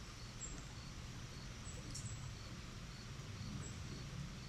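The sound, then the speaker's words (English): A chipmunk chirps repeatedly at irregular intervals, short, sharp, high-pitched calls, fairly faint over a steady low background hiss. No one speaks. “But I hear one that just won't quit chirping.”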